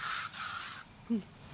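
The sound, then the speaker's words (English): A steady hiss of aerosol bug spray in a garden by a small pond in late afternoon, lasting under a second, swelling slightly in two pulses, then stopping; a brief faint tonal chirp follows in the quiet. “Thanks for the bug spray.”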